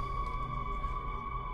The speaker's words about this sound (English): Whoa. Yeah, Blade Runner, guys. That low bass hum, Jesus Christ.